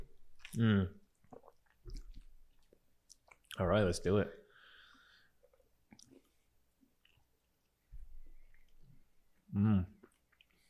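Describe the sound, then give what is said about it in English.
Quiet biting and chewing of a chocolate-covered orange, eaten alongside bourbon, with soft clicks and mouth sounds scattered between brief bursts of people talking. “Take a bite of that and then bring the bourbon to it.”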